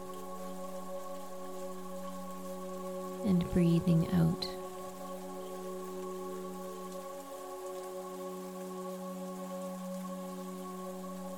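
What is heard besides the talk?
rain falling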